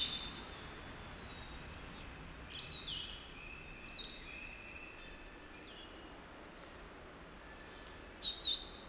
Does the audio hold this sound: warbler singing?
yes